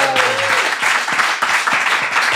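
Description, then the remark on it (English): A round of applause for Dawn O'Porta from a small group, dense overlapping claps for a couple of seconds at steady, fairly loud volume, with a brief tonal voice-like sound at the start. “A round of applause for Dawn O'Porta.”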